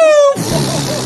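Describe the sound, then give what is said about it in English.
Someone imitates a pig squeal with a single loud, shrill, tonal squeal that dips slightly in pitch and lasts about a third of a second, then it cuts into rough, muffled noise and voices. “We still need a pig squeal.”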